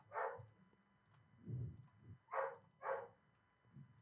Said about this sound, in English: I wonder if everyone else can hear our dog. Can you guys hear our dog?